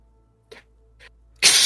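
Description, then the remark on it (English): A voice imitates an owl's screech: two short breathy puffs, then a loud, harsh, hissing screech that holds steady to the end. “Owl screech.”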